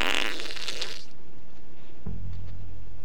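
fart

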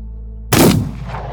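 gunshot

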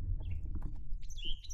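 birds chirping outdoors

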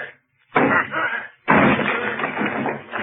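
door being broken down

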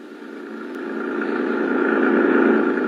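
jeep engine driving

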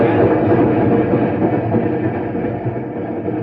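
train riding on rails

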